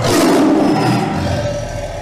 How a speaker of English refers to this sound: my sound effect is the Tiger roar.